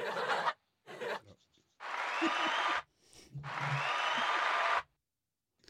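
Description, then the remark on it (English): Crowd applause, marking excitement that the NHL season is back, comes in bursts: two short claps of noise, then two longer stretches of dense, steady clapping about a second or more each, separated by brief silences. “Yeah, like applause, like let's go.”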